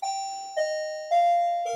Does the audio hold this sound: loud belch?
no